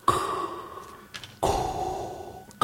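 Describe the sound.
A voice imitates heavy, raspy breathing in the manner of James Earl Jones: two long, loud breaths, drawn in and pushed out, with a short pause between them and a third starting at the end.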